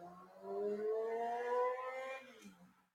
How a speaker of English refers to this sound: You hear that in the background? That was a car being rude.